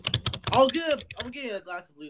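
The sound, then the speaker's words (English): A quick burst of several computer keyboard clacks done as keyboard ASMR, then a person's voice takes over with high, warbling vocal sounds and talking, with a few softer taps between. “Keyboard ASMR.”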